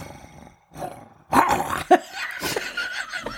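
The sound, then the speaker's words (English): A person imitates a growl, more like a dog growl, with a rough, throaty vocal rumble, ending in a few short gravelly bursts. Moderately loud, with no words spoken. “I can't growl. Okay, that was really good. That was more of a dog growl though.”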